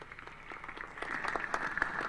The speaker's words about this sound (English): That's such a lame applause.